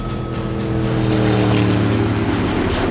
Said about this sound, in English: Yes, we've just spotted them now. Yeah, heading west in a high-speed patrol boat.